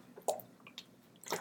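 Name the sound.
person drinking water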